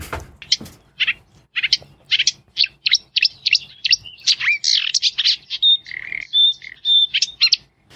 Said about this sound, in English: It sounds like maybe one of the reed warblers or some other warbler from Europe. But no. What do we got, Sean? It's a marsh warbler.